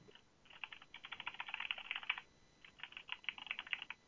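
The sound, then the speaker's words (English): Rapid keyboard typing in two bursts separated by a short pause, a quick clatter of many key presses, quiet, with no voices. “Are you typing all this down?”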